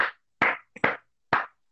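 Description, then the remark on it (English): A few loud, sharp hand claps by the hosts at a loose, uneven pace, about four in all, with one landing as a quick double. No one speaks between them. “Let's clap.”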